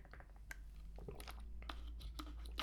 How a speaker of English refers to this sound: let me take a sip here. Sorry.